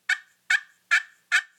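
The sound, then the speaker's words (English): Four evenly spaced, raspy yelps from a turkey slate call, each a sharp, fairly loud note imitating a hen turkey, with brief silences between them and no talking. “That one is a slate call.”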